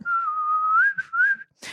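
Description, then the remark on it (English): A person whistles a steady, slightly wavering tone in two phrases with a short break between them, clear, followed by a brief breathy puff of air. “I have a cold sore right now, so it's hard for me to whistle.”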